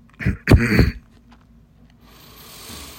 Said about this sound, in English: But the cough is so fucking annoying. That's why I shouldn't be doing this. I shouldn't be talking.